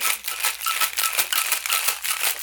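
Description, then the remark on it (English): A cocktail shaker rattles with ice as a cocktail is shaken to dilute it, in a quick, steady rhythm, bright clattering hits repeating several times a second for a couple of seconds, fairly loud with no voices. “I'm diluting it. That's why I'm shaking it.”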